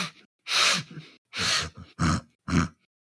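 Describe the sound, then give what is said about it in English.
Four or five rough, congested grunts in an uneven rhythm, each a short noisy burst with breathy snorting texture, moderately loud, with brief silences between them, heard in the dark at night from near a large boulder at a camp. “congested elk? A hog? Congested hog?”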